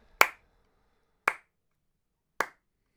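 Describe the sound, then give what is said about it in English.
A sad, slow hand clap: three evenly spaced claps, each a sharp crack with a brief tail, the first the loudest, followed by silence in between, with no talking. “the sad clap.”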